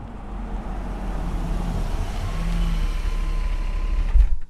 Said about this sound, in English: I'm sitting in my car in the car park of Top Pub, as it's called by locals in Coromandel, which is apparently, I've been told, the pub where the men go. This is where the pig hunters and the fishers gather, and it's 5 o'clock on a Friday.